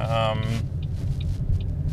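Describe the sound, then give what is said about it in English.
Steady, deep engine and road rumble from inside a moving car, back on the road after a stop for gas, continuous throughout, with a brief tonal, voice-like sound at the very start and faint ticks over the drone. “And we are back on the road again.”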